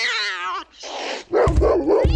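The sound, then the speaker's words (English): A cat named Leo yowls and hisses, then a large dog named Tiny answers with a burst of deep, rough barks and growls, loud, with no talking, as pets are brought to a studio on bring-your-pet-to-work day. “your dog is huge.”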